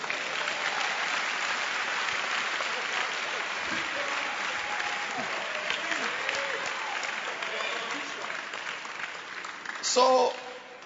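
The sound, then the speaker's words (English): A crowd claps for Jesus in sustained, dense applause, with scattered voices and cheers mixed in, and a brief louder shout rising near the end. “Clap for Jesus.”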